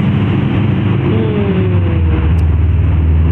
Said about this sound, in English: I love big engines, or was that bad exhaust?